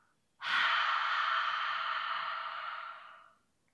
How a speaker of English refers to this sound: One more time. In through your nose. And breathe out.